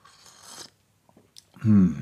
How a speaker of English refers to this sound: Need another sip of coffee today.